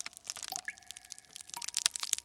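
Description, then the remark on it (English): Crisp, crackly crunching as a door is bitten into and eaten, a rapid run of sharp cracks and crumbles, with a thin whistling squeak partway through, with no one talking. “Okay, you want to try it? Let's eat the door.”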